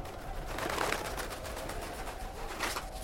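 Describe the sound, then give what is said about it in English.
A bird named Chivalry shrieks in harsh, raspy cries over a steady noisy background, rising in two louder bursts, with no one speaking. “Chivalry, what are you shrieking about? Get your claws on a mouse or something. Very well, you feathered devil, very well.”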